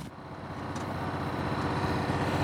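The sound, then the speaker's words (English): A golf cart driven by a maintenance man around a school while spraying for weeds moves along with a steady, low motor hum and rumble that holds constant for a couple of seconds, with no voices. “we noticed a maintenance man driving a golf cart around the school spraying for weeds.”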